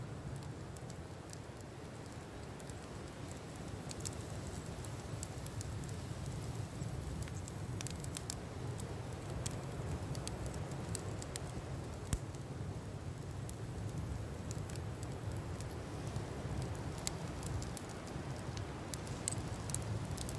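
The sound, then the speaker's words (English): A steady low hiss and rumble runs throughout, broken every so often by faint, sharp crackles and pops like static electricity, scattered irregularly with no voices present; the crackling of the northern lights, from charged particles of solar flares colliding. “Every so often, a little crackle accompanies, like static electricity.”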